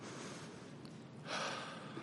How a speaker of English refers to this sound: They say to control your breathing and take deep breaths.